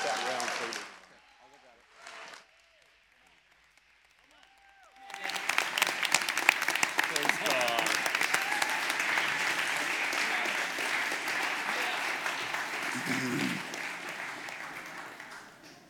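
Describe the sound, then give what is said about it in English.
A large church audience stands and breaks into sustained, loud applause to honor a preacher as he comes forward, after a brief quiet pause, the dense clapping holding steady for about ten seconds with some voices mixed in. “If the offering's as good as the applause, we're going to be so happy.”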